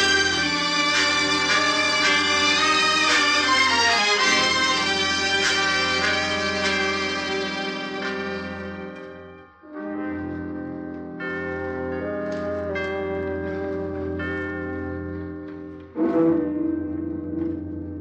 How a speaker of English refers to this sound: As the bell of San Lorenzo proclaims the curfew hour, I call out to you, Ave, Duce, Ave.